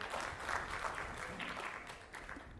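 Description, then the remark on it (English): An audience breaks into steady, dense clapping that holds throughout at an even, moderate level, a continuous patter of many hands with no voices standing out. “And so, yeah, you can clap for that.”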